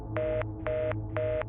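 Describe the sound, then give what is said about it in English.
A phone being dialed to call a police chief for help: three short, evenly spaced touch-tone beeps, clear, over a low background hum with no talking. “Bishop then grabs his phone and dials the chief for help.”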